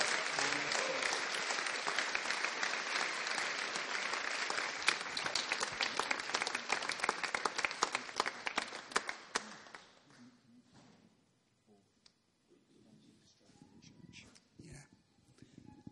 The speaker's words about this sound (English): Can we just give them a round of applause just as they...